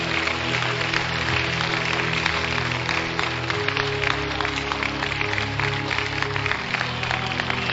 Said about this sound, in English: Clap your hands, please.